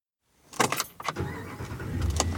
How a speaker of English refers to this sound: Okay. So here we are in a very large truck. Probably unnecessary that I rented this big of a pickup truck. But here we are. We are driving into Yellowstone.